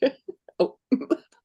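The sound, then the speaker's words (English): A fairly loud fit of coughing: four or five sharp, harsh coughs in quick, uneven succession with brief gaps between them, and no talking. “I'm sorry, coughing.”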